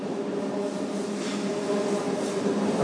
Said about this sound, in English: My train is here.